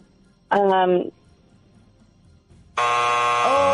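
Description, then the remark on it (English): A quiz time-up buzzer blares twice, loud and harsh: a short half-second blast, a brief pause with faint background, then a longer sustained buzz that runs to the end. “We got a time buzzer.”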